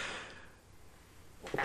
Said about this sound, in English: And I've never sneezed on a podcast, but I think